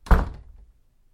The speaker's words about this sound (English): Then, without another word, he slammed the door behind him and was gone.